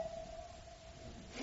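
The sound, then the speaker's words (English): A faint ambulance siren drones outside as a steady, mid-pitched wailing tone that holds nearly level, then shifts slightly at the end, with a low background rumble and no talking. “The ambulance is not for you.”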